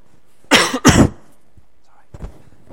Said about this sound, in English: Sneeze a couple of weeks ago, now it's my cough.